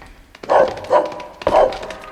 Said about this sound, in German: als ein Hund mit kurzem braunem Fell und kräftigem Gebiss auf sie zustürmte.